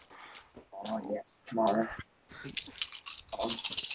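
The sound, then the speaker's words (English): Dice rattle and clatter in a quick, bright burst of clicks toward the end as a tabletop role-playing game player rolls for initiative, preceded by a voice talking over scattered tapping. “I need one more dice. Don't fail me now.”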